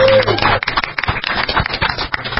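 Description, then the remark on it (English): A short burst of crowd applause sound effect played on Orange County community internet radio station OCTalkRadio.net: dense, crackling clapping from many hands that holds steady and loud for about two seconds, right after a brief tonal sound at the start. “Round of applause.”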